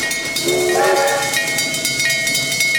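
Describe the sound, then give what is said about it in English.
A steady, loud train rumble with sustained whistle-like tones ringing over it and a faint rhythmic clatter, with no voices throughout. “You mean to tell me that in the year 1979, there would be not one, but two shows on television that featured high-tech, physics-defying choo-choo trains?”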